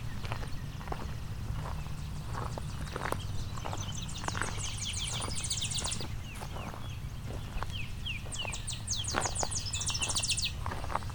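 A Tennessee warbler sings loud, two bursts of rapid, high staccato chips that speed into trills, over a steady low rumble with scattered clicking taps.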